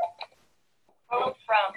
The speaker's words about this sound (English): In terms of who's getting a phone call, I'm getting a phone call. Who knows what's going to happen in terms of who has a phone that rings? Oh my god! What year is it? I have a house phone.